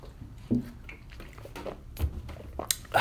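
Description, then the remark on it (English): A swig of water: a few quiet gulps and swallows with small wet clicks and a soft clink near the end, with no one talking. “Needed to take a swig of water.”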